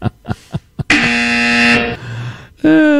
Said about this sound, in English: they don't want Elon Musk making cars that fart as they back up. Hard fart primary.